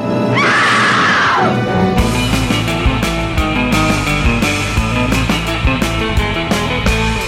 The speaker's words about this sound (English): And how could we close this show except with a scream? And that's where you put in an Anchors scream. Yeah. I couldn't do it justice. So we'll let her do it.